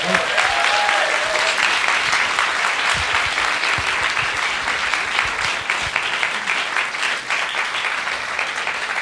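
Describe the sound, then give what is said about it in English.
An audience claps steadily for Donica Dennehy in a sustained, dense round of applause, loud and even throughout with no break, a bright crackling wash of many hands. “So we're sad you can't stay and have a drink afterwards, but let's have a round of applause again for Donica Dennehy.”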